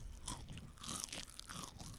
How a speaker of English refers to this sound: I guess it's chip eating time in Anchor Land here. Everyone's, you want to get a sound bite of that crunchy chip there? Anybody? Nope. Just going to eat chips.